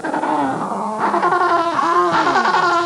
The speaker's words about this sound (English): Let me play it one more time. Yeah, that's a penguin.